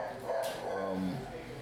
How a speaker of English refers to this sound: There's a dog barking.